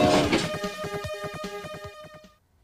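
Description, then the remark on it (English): A short, loud train sound effect introducing an Amiga News segment: rapid rhythmic chugging clatter under a steady whistle-like tone, cutting off abruptly after about two seconds with no voices. “Amiga News. Gamble Train.”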